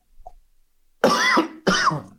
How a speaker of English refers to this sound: I don't know if that was successful stifling that cough or not. Not one bit. I think you might have amplified it into your microphone.